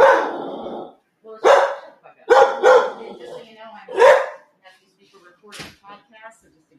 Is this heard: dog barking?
yes